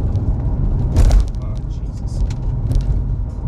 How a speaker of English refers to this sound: Car's all like wonky. I think I need struts or something. And this isn't a paved road. I'm sure you guys can hear it. No bueno.